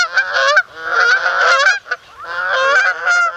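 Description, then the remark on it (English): A goose honks loudly in long, harsh, nasal blasts, three drawn-out calls with brief breaks between them, strong and raspy throughout with no other sounds. “Vin roll that especially fat honk.”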